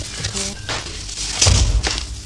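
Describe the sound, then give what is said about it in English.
A door being shut, heard as a single dull, low thump about midway, surrounded by faint shuffling and rustling noises. “Door is shut.”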